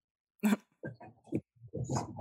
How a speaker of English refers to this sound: It's our dog.